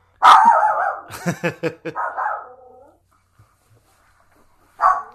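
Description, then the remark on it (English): A dog barks as a sound effect in the movie Cold Mountain: a drawn-out bark, then a quick burst of sharp yelping barks and a longer whining one, followed by a pause and a single final bark. “The dog is an effect of the movie, by the way.”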